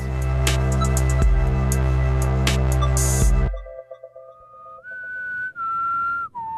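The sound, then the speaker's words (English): After a loud burst of bright, dense music cuts off, a person whistles a few sustained tones, mimicking a boat whistle, with short breaks between the long held notes and a final lower dip. “Well, I'm trying to do like a boat whistle.”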